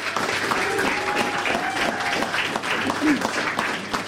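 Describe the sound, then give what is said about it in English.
An audience claps steadily for several seconds for the evening's guests and experimenters, a dense, even wash of applause with faint crowd murmur and a brief voice or whistle-like tone rising through it. “So can we have a round of applause for our brilliant guests and experimenters tonight, please?”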